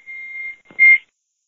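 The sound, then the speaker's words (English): A phone rings with a steady, high electronic tone lasting about half a second, then a brief pause and a louder, buzzier burst at the same pitch, with no voices. “So whose phone was that?”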